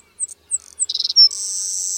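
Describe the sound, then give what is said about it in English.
A male savannah sparrow sings clearly: a few thin, high introductory chips, a short rapid stuttering trill, then a long sustained insect-like buzz, with no voices or other sounds. “Recently, researchers tracked the lifespans of male savannah sparrows over 6 years using only recordings that captured individuals' uniquely identifiable songs.”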